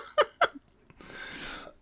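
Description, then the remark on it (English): Two quick, sharp coughs, followed by a raspy, breathy throat sound and then one more loud, abrupt cough at the end. “Excuse me, still plagued by that silly cough.”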